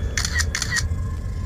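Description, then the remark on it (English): Two quick camera shutter clicks in a row, each a crisp mechanical snap with a bright, rattly edge, over a steady low rumble, with no one talking; a picture is taken in a parking lot through the open driver's door of a Jeep as someone climbs in and buckles the seatbelt. “I'll just come around the other side and take the picture through the open driver's door.”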